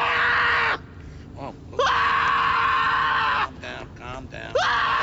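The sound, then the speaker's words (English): A voice imitates Broderick screaming inside an ambulance in three loud, strained bursts: a short one, a longer sustained wail, then a brief final cry, separated by quieter breathy pauses. It sounds forceful. “One is Broderick screaming inside of the ambulance. Just, which he does in short bursts.”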